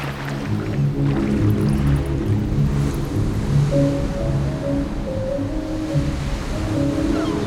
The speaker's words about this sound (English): Now this is the way to travel. The spray of the water, the wind in your hair.